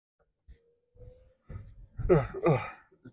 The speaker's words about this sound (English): I'm yawning. Oh, tell you what. It's one of those days.